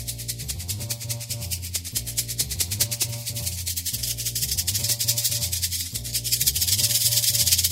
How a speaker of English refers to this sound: For example, if you're wearing headphones right now, you should have no problem hearing these rattles being moved from right to left around your head.